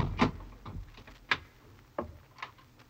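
A quiet series of clicks and knocks, about five sharp mechanical sounds spaced unevenly, like a door being unlatched and opened, with no voices.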